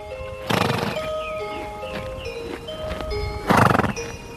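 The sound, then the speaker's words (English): A horse whinnies, with two loud breathy snorts about three seconds apart and faint hoof clops underneath. No one speaks. “Horses have this sour, sweet, acrid smell, a very warm smell.”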